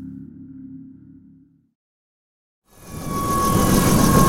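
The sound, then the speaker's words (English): A helicopter engine, recorded on a body camera after landing, idles with a low rumbling hum that cuts out into brief silence, then a loud roar with a steady high whine starts up and holds. “It's really quiet here without the engine running!”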